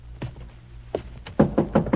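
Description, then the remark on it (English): Heavy pounding on the outer door of a dilapidated mansion at 9 o'clock: a few scattered thuds, then a rapid run of four loud, forceful blows near the end, with no voices. “The hands of the clock in the dusty hallway stand at precisely 9 o'clock as an old woman comes slowly down the stairs, an oil lamp clutched in her gnarled hand to answer the violent pounding on the outer door.”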